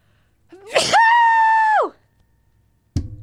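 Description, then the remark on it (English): A single loud sneeze into a t-shirt: a sharp breathy burst that stretches into a long, strained, high-pitched voiced cry, then tapers off. A short thump follows after a pause. “That was the loudest sneeze ever.”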